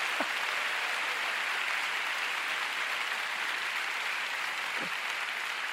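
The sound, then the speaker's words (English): An audience claps together to give God a big hand, in a dense, sustained burst of applause, a steady crackling wash of many hands that holds at an even loudness throughout, with no talking. “Let's give God a big clap.”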